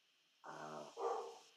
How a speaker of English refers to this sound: Oh, big dog bark.